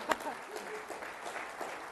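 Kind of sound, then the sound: crowd, audience round of applause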